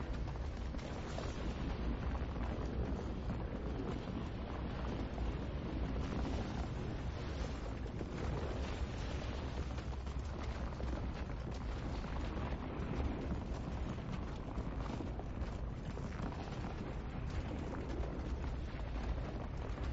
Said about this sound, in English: So if you're just tuning in, this is Iceland. After a series of earthquakes, this volcano erupted. And it does. It sounds like a dragon.